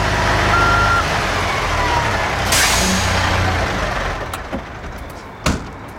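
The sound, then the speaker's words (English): A giant lorry arrives with a heavy low engine drone, a sharp hiss of air brakes midway, then the engine settling as it pulls up, with a couple of clunks near the end. “And, here comes someone. It's a giant lorry.”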